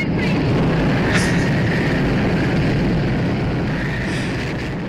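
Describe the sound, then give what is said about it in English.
A loud, continuous roar of powerful hurricane-force wind at about 92 miles per hour, dense and rumbling, holding steady for the whole stretch with only slight easing near the end and no voices over it. “It really sounds windy.”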